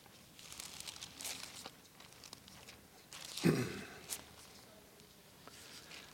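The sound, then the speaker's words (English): Soft papery rustling as Bible pages are flipped to Ephesians chapter 1, several brief crinkly swishes with one fuller sweep midway, fairly quiet and scattered as if from many people, with no talking. “Well, these days there's less and less pages turning.”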